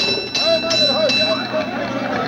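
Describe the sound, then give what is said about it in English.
A team of horses hauls a firehouse's fire engine to a fire in 1826, with a steady clattering rumble, a few sharp hoof-like knocks, and faint ringing tones riding above the din. “A team of horses pulling the fire engine of the Norwich Union Boys Firehouse.”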